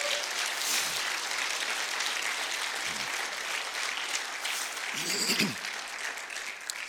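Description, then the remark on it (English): An audience claps their hands in praise of the Lord in a steady, dense wash of applause that holds at an even level throughout, with a brief voice rising out of the clapping near the end. “And I just want you to give the Lord a hand clap of praise for that.”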